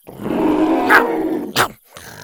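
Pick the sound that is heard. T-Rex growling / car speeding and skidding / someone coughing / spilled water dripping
T-Rex growling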